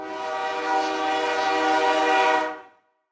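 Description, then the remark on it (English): A loud, sustained train horn blares with steady harmonic tones for about two and a half seconds over the low rumble of a passing train, then cuts off abruptly. “Let's talk about bomb trains.”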